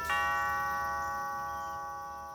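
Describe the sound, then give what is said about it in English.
A doorbell rings once with a bright chime that hangs in the air and slowly fades, clear, with no voices around it; the doorbell of an old, beautifully kept house with a big lawn and flagstone path in Los Angeles. “Holding the slip of paper in my hand, I walked across the flagstone path that cut through the big lawn and rang the doorbell.”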